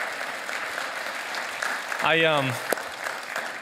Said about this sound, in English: Hey, can we give the worship team one more round of applause?